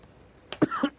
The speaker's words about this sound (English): Well, we can see you still have a cough.